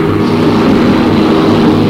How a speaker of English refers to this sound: A couple days rest, and then we all climbed in that chopper, and they took us out.